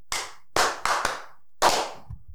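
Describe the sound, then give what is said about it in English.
A few sharp hand claps, irregularly spaced, five distinct smacks with short ringing decay, followed by a faint low rumble at the end; no one speaks. “Give him a clap.”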